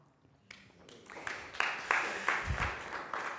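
An audience breaks into applause honoring someone's mother, swelling from a faint start to a steady, dense wash of clapping, with a few sharper claps standing out as it builds.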